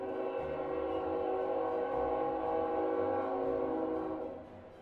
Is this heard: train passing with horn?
yes